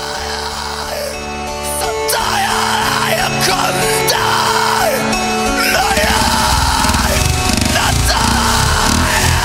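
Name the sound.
screamed vocals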